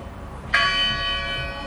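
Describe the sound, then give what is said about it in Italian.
A single church bell strike from the 'Church Bell' sound effect preset, played in software, rings out clearly, its bright metallic tone sustaining with shimmering overtones that slowly decay; no voices are present. “Quindi la campana della chiesa.”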